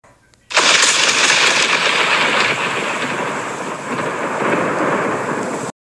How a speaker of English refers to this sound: Insert lightning bolt right there.